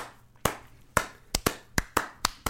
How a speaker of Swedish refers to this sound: Det är värt en applåd.